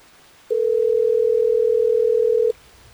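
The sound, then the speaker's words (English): A single steady telephone ring tone sounds as a call is placed on the Hot 101.5 radio show: one loud, unbroken electronic tone lasting about two seconds, heard alone with no talking, then it cuts off. “Well, let's get Andy on the phone so we can figure this out for you, Jessica.”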